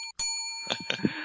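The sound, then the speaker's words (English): A double bell rings to mark the beginning, with a bright, sharp strike and a long, shimmering tone that lingers. Voices start talking underneath as the ring fades. “you know that's a double bell for the beginning.”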